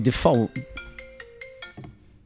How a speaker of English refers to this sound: Sorry about that. I've got to turn the ringer on my phone down. You know, that was really loud. Yeah, you have to have it loud. As you get older, you have to turn it up.